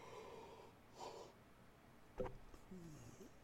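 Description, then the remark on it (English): A person yawns: a breathy intake of air, then a brief drawn-out voiced sigh that wavers and trails off, fairly quiet, with no talking. “Professional podcasters have yawn buttons and stuff like that and would probably edit that out.”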